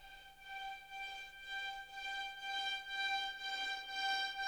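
A synthesizer patch using orchestral strings holds a steady, bright, siren-like tone rich in high harmonics, its volume pulsing from an LFO in a regular throbbing rhythm roughly twice a second. No one speaks over it.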